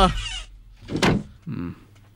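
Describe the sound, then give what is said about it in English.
The door to a person's room creaks and bumps as it opens, followed by a solid thud as it shuts, a short sequence of handling sounds over about two seconds. “Damn, where's the handle to my door?”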